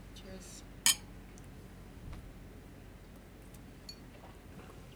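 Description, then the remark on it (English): A single bright, sharp clink of glasses touching in a toast, ringing briefly before fading into quiet with a faint low hum. “cheers to that.”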